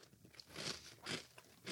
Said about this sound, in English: It's like the brownie brittle is like the burnt on pieces of the brownie on the pan. Which are the best pieces. Mm-hmm. Yeah. Good crunch. Good flavor.